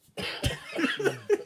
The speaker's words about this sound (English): Yo, don't cough over here.